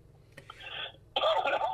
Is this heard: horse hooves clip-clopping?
no